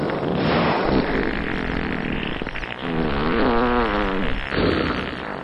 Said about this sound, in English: Oh, man, do you smell that? That is friggin' toxic. Something died inside that whale. Hey, I told you, humpback whale farts are odorless.